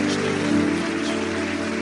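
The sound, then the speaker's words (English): An audience claps for the Lord in a dense, continuous wash of applause that stays steady and fairly loud throughout, with faint sustained low tones running underneath. “Clap for the Lord.”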